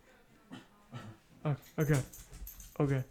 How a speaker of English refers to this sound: Shut up, dog. Shut the fuck up.